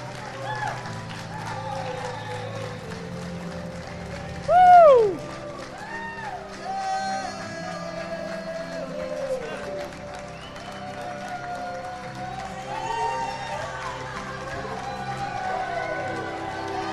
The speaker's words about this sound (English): Yeah, amen. Let's celebrate that. Clap your hands. Yes, Lord.